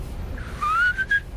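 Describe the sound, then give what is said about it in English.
A person whistles a short rising, sliding phrase imitating a blackbird, clear, with a brief second note at the end over a low background rumble. “Blackbird whistle first?”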